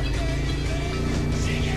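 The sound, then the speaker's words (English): A motorcycle engine rumbles, a steady, loud low drone that holds at a constant level throughout, with no voices over it. “I got a motorcycle coming through the door.”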